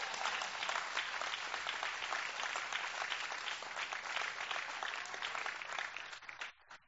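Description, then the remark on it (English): A roomful of people claps steadily for several seconds in thanks to a couple for 15 or 16 years in Morocco, a dense even patter of many hands that holds at a strong level before thinning out and fading near the end. “That clap goes for them too.”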